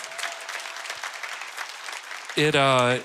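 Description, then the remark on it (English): A crowd at a service claps steadily in sustained applause for a couple of seconds, then a voice begins speaking loudly as the clapping fades underneath. “Yeah, you can clap for them.”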